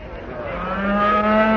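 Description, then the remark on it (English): A single long, low moo from a cow, droning steadily and swelling slightly louder toward the end, with no other sounds around it. “I say, would you mind keeping that cow quiet?”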